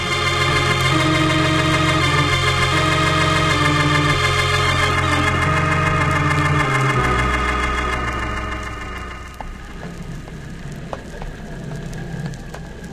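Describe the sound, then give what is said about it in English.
A boat engine on a lake drones steadily and loudly with a deep harmonic hum, dropping in pitch partway through, then continuing lower beneath a hiss that sounds like rain on the water. “How's that engine doing, Ned?”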